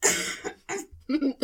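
A few short coughs in quick succession, sharp bursts with brief gaps between them, followed by a lower throaty hack at the end.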